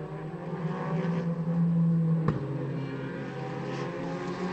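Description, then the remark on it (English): Porsche race cars blazing past, their engines roaring in a steady, loud drone that holds throughout, with a brief sharp crack about halfway through. No one speaks. “Great to hear those Porsches just blazing past us.”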